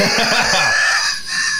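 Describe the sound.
A person's voice mimics two cats screeching at each other on a fence opposite a patio wall: a loud, strained yowl with wavering pitch, lasting under two seconds, with no other talk.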